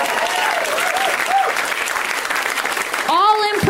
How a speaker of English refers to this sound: You guys have been great right up top. You guys have been wonderful. I've been great. You can clap for me if you want to.